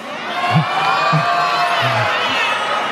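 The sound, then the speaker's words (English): A crowd in a played clip of a speech cheers and whoops in a loud, steady roar for about three seconds, many voices overlapping, with a few dull low thumps underneath. “Did you hear the crowd reacting to that?”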